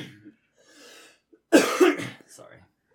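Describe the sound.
A single sharp, rough cough bursts out, loud and brief, followed by a fainter throaty rasp, with soft murmuring voices before and after it.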